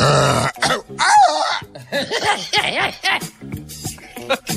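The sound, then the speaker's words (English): A person vocally imitates an injured mountain lion's cry with strained, growling yowls and wavering rising-and-falling wails, loud and rough, in several bursts that break into choppy vocal noises. “That's an injured mountain lion.”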